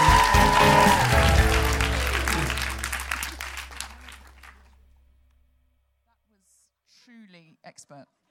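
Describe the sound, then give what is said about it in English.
Loud audience applause with cheering fills the first few seconds, then gradually dies away into quiet before a voice begins speaking. “I mean, I'm a feminist, but I incorporated a slut drop into the applause wrangling.”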